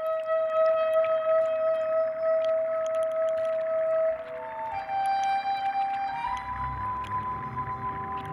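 A soprano saxophone on a record holds long, steady high notes, sliding to a new pitch a couple of times, with a low rumbling texture joining underneath toward the end. No one speaks.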